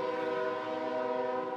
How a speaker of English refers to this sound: There's the buzzer. It's time to start.